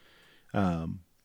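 A single cat meow, loud, lasting about half a second with a slightly falling pitch, over a faint quiet background with no talking.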